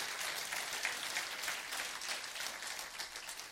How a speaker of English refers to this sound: Now give God a hand clap of praise, because he is worthy of just that, church.